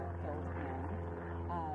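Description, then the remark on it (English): A steady, continuous engine drone from planes flying overhead out of San Carlos Airport in the San Francisco Bay Area, a low hum with layered tones holding level throughout, slightly wavering in pitch as the aircraft pass. “I could still see Highway 101 and hear the drone of planes flying out of the San Carlos Airport.”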